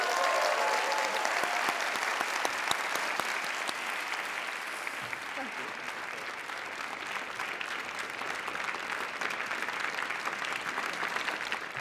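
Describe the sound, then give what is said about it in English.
A crowd applauds steadily for about twelve seconds, a dense wash of many hands clapping at an even, fairly loud level with no voices standing out, giving a round of applause to Gary Oldman. “Everybody, spread the good word, and please give one more round of applause to Gary Oldman.”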